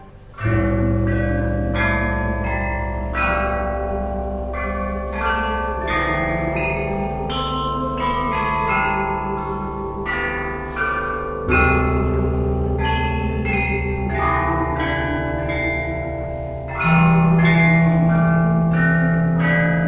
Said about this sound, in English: through to the young musicians who represent the future of chime bell music, they all share in the optimism that these majestic bells have a bright future as part of Chinese culture.